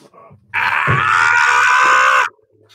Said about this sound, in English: Oh shit! What was that? I know that was me screaming.